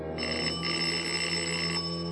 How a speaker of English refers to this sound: While I waited for the doorbell to be answered, I scribbled a note on my card and dropped it.